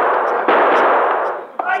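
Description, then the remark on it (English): Two sharp gunshot cracks, spaced about a second apart, cut through a steady loud hiss during a gunfight between lawmen and outlaws among rocks on a creek bank; a man is hit in the shoulder, and a brief voice rises just after the second shot. “You shot me in the shoulder.”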